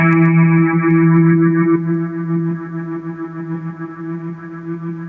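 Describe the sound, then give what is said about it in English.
An electric guitar played through delay, tremolo and reverb effects rings out a single sustained octave, drenched in reverb, its tone soon pulsing with a steady wavering tremolo as it slowly fades. No voices. “So here's what it sounds like with everything I can throw at it. And let's see, I'll just play an octave.”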